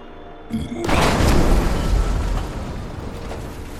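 A breaching charge explodes with a single heavy blast, then a loud, crackling rumble of debris that slowly fades over the next few seconds. No voices.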